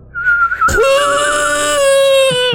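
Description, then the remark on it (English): A shrill, piercing human whistle holds one steady high pitch, then jumps to a lower, harsher sustained tone rich in overtones for about two seconds, loud with no talking. “Disgusting, piercing. Yeah, it's those hobgoblin teeth. They really mess up a whistle.”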